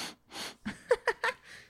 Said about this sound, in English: He's sniffing.